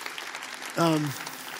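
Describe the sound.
An audience claps steadily throughout, a dense patter of many hands, with a brief voiced call or cheer rising above it partway through.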